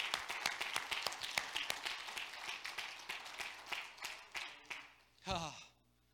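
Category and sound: crowd, audience clapping hands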